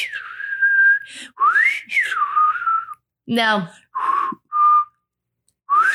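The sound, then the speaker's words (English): A person whistles a bouncy melody from a 1979 disco hit, in sliding, sustained phrases broken by short pauses, with a single spoken word cutting in midway before the whistling resumes. “I'm trying to whistle it.”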